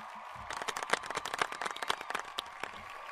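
A soft golf clap from a soundboard: a small group patting out light, scattered claps for about three seconds, brisk but restrained, with no voices over it.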